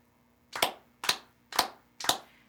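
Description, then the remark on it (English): Four crisp hand claps land at an even, steady pace, clapping the rhythm "peas, carrot, carrot", each one sharp and bright with a quick decay, and no voices in between. “Say and clap. Peas, carrot, carrot. Clap only.”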